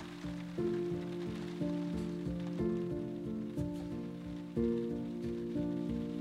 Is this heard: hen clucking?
no